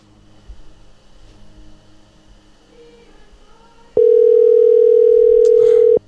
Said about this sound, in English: Better pick up. Your own dad won't even answer your phone call. Yeah. Pick up.